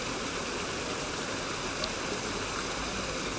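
Water splashes and rushes steadily from the Fountain of the Four Rivers, a large fountain with giant stone figures, a lion and snakes, a dense, continuous hiss that stays even and fairly loud throughout, with no voices or other distinct sounds standing out.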